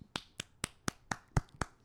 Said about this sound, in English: I'm so impressed by you. I just have to give you, I want to clap. I'm going to set down the microphone.